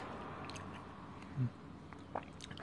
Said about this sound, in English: But they also sell them like wholesale. So you could get them by weight. And I got a pound. And that's what I'm fucking munching on right now.